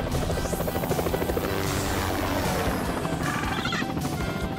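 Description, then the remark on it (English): A helicopter flies overhead, its rotor blades producing a loud, steady rhythmic chopping over a dense, roaring engine whine that stays constant throughout, with no voices. “What do you say we see what this bird can do? Woo! We are not getting you a helicopter.”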